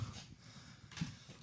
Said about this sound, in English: in case you hear panting in the background. Yeah, he had to climb one flight of stairs. I am out of shape.